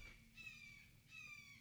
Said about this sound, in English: Hawk outside, Hawk. Y'all.